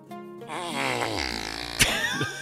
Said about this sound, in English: If it involves flatulence from farm animals, we are right there.